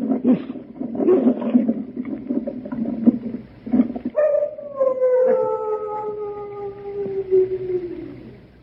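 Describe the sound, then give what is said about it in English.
Large dogs kept at the Chateau d'Arzay snarl and growl roughly for a few seconds, then one long, wavering howl rises and slowly slides downward until it fades. Loud, with no one talking. “Only the dogs, monsieur. They keep many dogs. Large dogs at the Chateau d'Arzay.”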